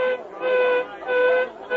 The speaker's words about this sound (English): And then one evening as I returned home, I heard the whistle at the mine. The whistle that meant only one thing to us. Tragedy. An accident. Someone in that black pit had died.